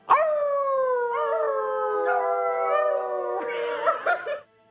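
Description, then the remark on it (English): A long, sustained canine howl with wavering pitch, rising and falling in a few drawn-out phrases, fairly loud, ending in a higher, breathier yelp-like tail. “I'm going to go with the third howl.”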